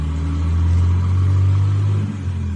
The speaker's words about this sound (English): We went across the street, got in the car, and took off.